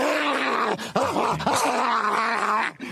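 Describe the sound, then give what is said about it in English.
Dogs growl and snarl at each other in rough play, a continuous rumbling tussle with rising and falling growls, fairly loud, with no talking. “And these guys, I mean, they're having fun now, but my goodness, they've also got a dark side.”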